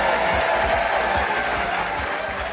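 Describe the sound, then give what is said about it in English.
A studio audience applauds enthusiastically after a contestant wins £32,000, a dense, steady wash of clapping that stays loud throughout and eases only slightly at the end, with no voices standing out. “The crowd seemed to get particularly enthusiastic at that point.”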